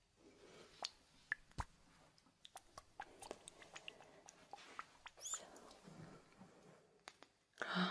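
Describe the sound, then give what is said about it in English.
A container holding two different oils, sea oils and earth oils, is shaken, making irregular wet clicks and sloshing bursts, with a louder rush of liquid near the end and no talking. “look, there are two different oils in it. Sea oils and earth oils. And I need to shake it like this.”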